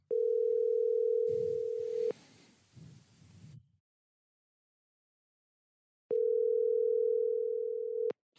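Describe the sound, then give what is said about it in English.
The ringing tone of an outgoing phone call, made while walking a dog out front, sounds twice, each a steady, low-pitched hum lasting about two seconds, separated by a long silent pause, with some faint rustling just after the first ring. “So anyways, I'm going to give these guys a call and hopefully this works.”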